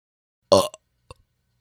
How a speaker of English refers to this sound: Anyways, here's your burp sound.